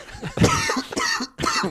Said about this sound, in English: Got a bit of a cough going on here.